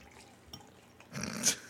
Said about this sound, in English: taking great pleasure in pouring as much out of that can as he's going to like squeeze it like a toothpaste, tube of toothpaste.